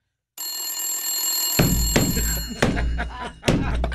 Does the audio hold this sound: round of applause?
no